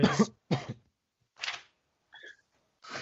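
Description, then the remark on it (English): A run of harsh, chesty coughs heard over a phone line comes in about five separate bursts, the first two close together and loud, the later ones spaced out and a little fainter, with no talking. “coughing down the foot, coughing down the line.”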